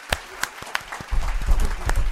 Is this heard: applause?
yes